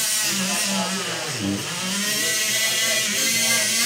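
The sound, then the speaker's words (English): A loud, continuous surgical saw whines with a steady buzzing drone as surgeons saw open a patient's breastbone during an operation, its pitch dipping briefly as it bites into the bone before rising again, with no voices. “The sound of them sawing open the breastbone was, I guess we can go with alarming.”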